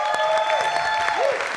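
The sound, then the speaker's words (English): Sustained audience applause at a church for the church's leaders, a dense steady wash of many hands clapping from start to finish, with a faint wavering whistle-like tone drifting over it. “Can we give it up for your leaders?”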